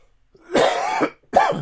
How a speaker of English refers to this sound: Excuse me, I'm not doing a jump cut. I'm not a YouTuber. Sorry, you get to see me cough.